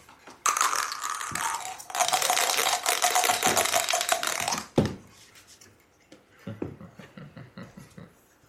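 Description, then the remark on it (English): Dice rattle steadily in a cup for several seconds during a dice game, then tumble out with a few scattered clicks and clatters, fairly loud, with no voices. “I throw in $1, and I'm out of dice. So you get one more roll.”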